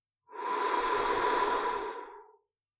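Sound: slow deep breathing out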